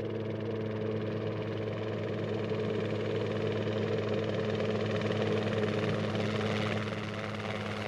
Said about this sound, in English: A cargo plane traveling nearby picked up the signal from the rescue beacon, and soon a helicopter approached the site.